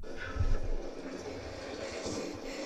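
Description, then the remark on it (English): A whale blowing through its blowhole: a soft, breathy rushing hiss over a low rumble, swelling briefly near the start and then holding steady and fairly quiet, with no voices. “saying a whale blowhole”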